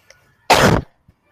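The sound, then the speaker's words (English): A single loud, sharp sneeze, set off by cinnamon, bursts out suddenly and ends within about a third of a second, followed by quiet. No one is talking. “Bless you. It's the cinnamon.”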